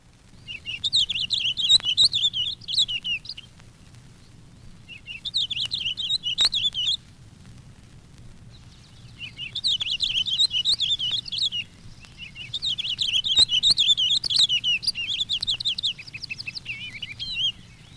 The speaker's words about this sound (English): There are, however, a few finches that do sing. One is tiny, charming, and petite, the African siskin or green singing finch. Listen to his delightful wild song.